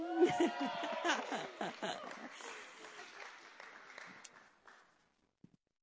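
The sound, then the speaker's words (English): A crowd cheers with whoops and shouts over dense applause, loud at first and gradually thinning out before stopping, followed by a couple of faint thumps. “You can cheer now.”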